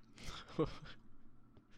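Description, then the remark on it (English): A short, close-up sip of water: a quick slurp and swallow, with a few small wet mouth sounds over about a second, then quiet room tone. “Let me take a moment to take a sip of water.”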